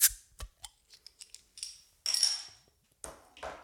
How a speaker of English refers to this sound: I have a, in case you were listening last time, we had a little bit of trouble with the bottle opener. We have a new one.